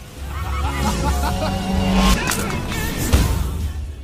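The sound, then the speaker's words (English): A car roars past amid a dense, noisy scene, then crashes through something, followed by a sharp crash and explosive burst as it explodes, with a faint murmur of background voices. “It exploded after a car went through it.”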